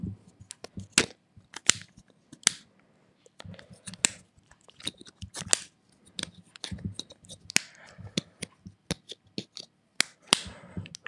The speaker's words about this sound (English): That was the AirPods. I don't know if you could hear that very well.